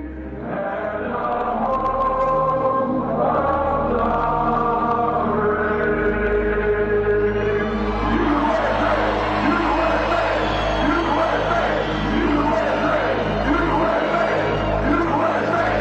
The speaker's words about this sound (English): You have to know, these are the January 6th guys, right? The prisoners, they're singing it over a phone, I guess?